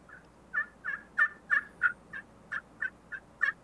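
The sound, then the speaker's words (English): A slate-over-glass turkey call played in a quick series of about ten sharp, high yelps, evenly spaced and fairly loud, with no talking. “Cause I have, so right here, I have a slate over glass.”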